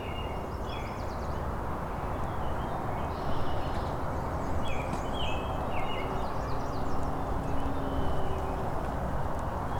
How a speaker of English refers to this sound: There's a great crested flycatcher.